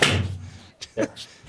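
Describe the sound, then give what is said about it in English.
A door slams shut with a loud thud that rings out and fades, as a person shuts a cat out of the room, followed by a couple of softer knocks or latch clicks a moment later. “I just locked her out of the room.”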